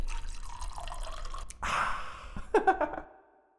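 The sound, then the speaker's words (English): A drink is poured into a glass, a short rushing splash lasting under a second, followed by a few bright drips and a light clink before it falls silent. “pour me another one.”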